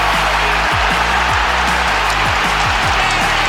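A loud, continuous roar from a home crowd celebrating an equalising goal against Morecambe, smashed in by Brad Halliday from Kieran Kelly's cross, a dense wall of cheering that holds steady throughout with no individual voices standing out.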